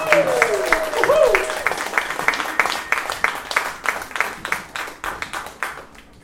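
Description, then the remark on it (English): An audience breaks into a round of applause for a moderator and a panel at a morning event, dense clapping that swells briefly and then tapers off over several seconds, with whoops and cheers rising above it near the start. “So would you guys give a rousing round of applause for our moderator,”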